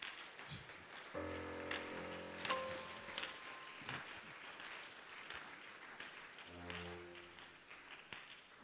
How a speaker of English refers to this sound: Hallelujah to Jesus. Clap for Jesus again. It's for Jesus. It's for Jesus. It is for the Lord.